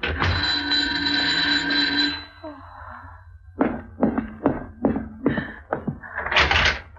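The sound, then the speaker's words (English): A drawn-out scraping door sound, then about six firm, evenly spaced knocks, ending in a short rushing burst as the door opens. “Someone's at the door. All right, get hold of yourself and answer it.”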